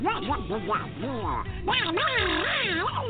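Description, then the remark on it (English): A man's voice imitates the cartoon duck Donald Duck, by an actor who voiced Donald Duck for many years, producing loud, squawky quacking speech with wobbling pitch that runs continuously for about three seconds, unintelligible in the raspy duck style. “I used to do the voice of Donald Duck for many years.”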